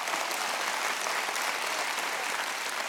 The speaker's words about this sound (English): You can clap your hands if you believe that today.